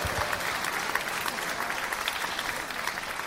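A steady burst of audience applause for a dog named Bobby fills the whole stretch, dense crackling claps from many hands at an even, moderately loud level with no talking over it.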